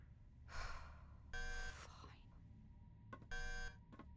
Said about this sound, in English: Turn off that alarm. It's making my head hurt. I am unable to turn off the alarm until I can sense that your feet are on the floor.